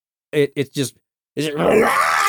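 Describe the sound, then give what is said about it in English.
A voice imitates villagers screaming as they are on fire and a house falls on them: three short, strained groaning cries, a brief pause, then one long, loud, raspy wail that trails on to the end. “There's the villagers are screaming because they're everyone's on fire and the house is falling on them.”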